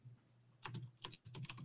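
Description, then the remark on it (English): Rapid, irregular keystrokes clatter on a computer keyboard as someone types, fairly quiet, starting after a brief pause and continuing in quick bursts with no voices. “I'm typing mine out.”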